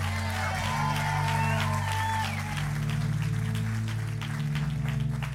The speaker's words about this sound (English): And if you believe it, come on, give him a hand clap and a shout.